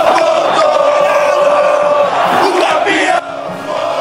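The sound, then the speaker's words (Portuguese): A large stadium crowd of São Paulo football fans roars and chants continuously, a dense, sustained wall of voices with rising shouts, dipping slightly near the end but never stopping. “Márcio Espinho, você tá ouvindo a torcida do São Paulo? Tá empolgada a torcida tricolor.”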